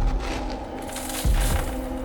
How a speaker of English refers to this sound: Footsteps.